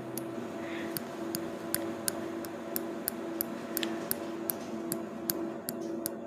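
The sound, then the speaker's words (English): Scissors for sectioning are picked up and handled, giving a steady run of sharp, light metallic clicks about twice a second over a constant low hum, with no talking. “say I was gonna be quick, so I went to go grab my scissors.”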